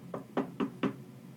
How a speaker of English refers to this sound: I'm going to knock on Marina's door.